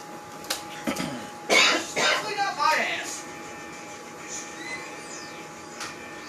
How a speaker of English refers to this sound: he's lying, he's not taking a shit, he's in there coughing.